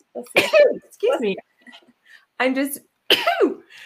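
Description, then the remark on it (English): Someone makes several short, breathy, strained bursts, a stifled attempt at sneezing that never fully comes out, with brief pauses between each try. “I was going to try to sneeze on the break, but it didn't work.”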